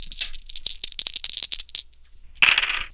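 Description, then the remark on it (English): A quick flurry of small hard clicks and rattles as dice tumble across a table, ending in a brighter clatter as they settle, with no one talking. “Okay, go ahead and roll.”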